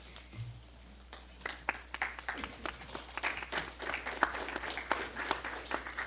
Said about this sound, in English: Thank you for the underwhelming applause. And thank you to the gentleman in the front row who started it all up for me.